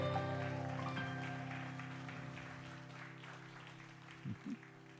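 An audience breaks into a round of applause, a dense wash of clapping that slowly fades over several seconds, with steady sustained musical tones underneath and two brief low bumps near the end.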